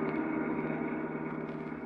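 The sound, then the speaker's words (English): A car drives along with a steady, continuous engine drone, a low humming rumble that holds an even loudness throughout, with no voices. “Right now, George, his secretary, Claire, and Sonny are driving along in his car.”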